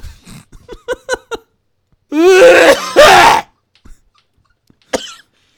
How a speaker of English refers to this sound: Be careful, you might start coughing and hacking again. I will cough.